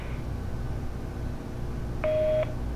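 A single telephone keypad tone beeps briefly near the end while dialing extension 100, clear and steady, over a constant low background hum of a phone line, with no one talking.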